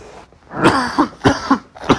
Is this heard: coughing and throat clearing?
yes